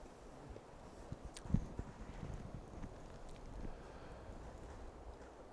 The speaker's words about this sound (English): I was just now enjoying the sound of the rain. It's nice, isn't it?